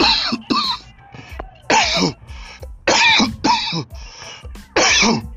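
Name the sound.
coughing fit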